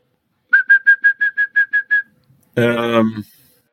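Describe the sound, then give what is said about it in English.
A European song thrush call imitated by a human whistler: eight quick, evenly spaced whistled notes, followed after a short pause by a louder, harsh, buzzy vocal squawk. “And now, the European song thrush, who usually sings in pairs from the tops of the trees.”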